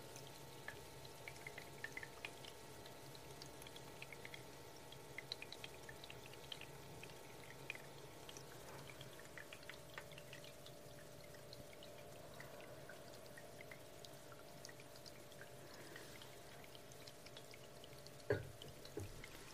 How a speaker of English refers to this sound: I like the sound of a little buzzing with the water trickling around.